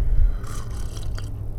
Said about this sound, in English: Sorry, I'm sipping a little coffee. And I don't even know what coffee I'm drinking this morning because my wife made it.